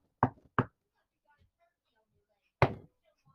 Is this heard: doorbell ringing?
no